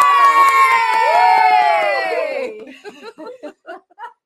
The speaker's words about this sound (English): See, we could cheer for you like that, too, if you come see us.